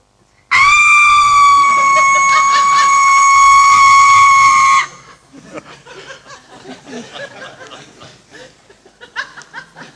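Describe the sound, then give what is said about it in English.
A person at an Easter camp imitates a screaming goat with one long, loud, steady bleating scream held for about four seconds, followed by scattered laughter and chatter from a small group. “who a couple years ago at Easter camp figured out that he had this incredible impersonation of a screaming goat.”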